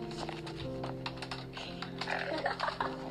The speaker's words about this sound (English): you know we're not removing all these clicking noises.